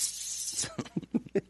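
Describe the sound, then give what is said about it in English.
A toilet flushes with a brief, loud, hissing rush of water that cuts off after about half a second, followed by people talking. “Flush.”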